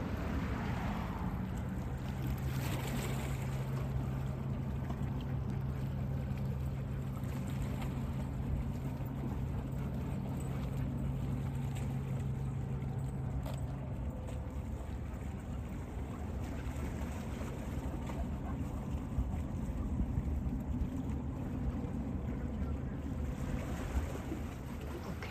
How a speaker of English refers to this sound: Maybe the water, the wave sound is much more powerful than my sound.